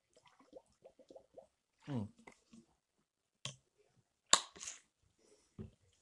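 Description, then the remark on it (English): Someone sips a drink of water with BCAAs: quiet wet lip clicks and slurps, then a couple of soft gulps and breathy exhales, with brief vocal noises between and no clear talking. “Honestly, think about it in your head while I sip this water.”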